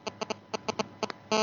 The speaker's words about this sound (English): The phone ringing or something? No, I've moved my phone miles away. Is it your phone?